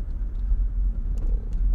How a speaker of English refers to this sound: I don't know what to do here. There is a dump truck. I don't know what to do.